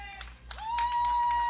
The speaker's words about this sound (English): Big swing and a miss there. That'll take us full, three balls and two strikes. You hear that gets a good hand from the crowd that's stayed around here for the extra innings of baseball.